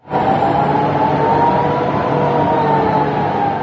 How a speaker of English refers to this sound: The air raid sirens, which warned of another long-range rocket attack.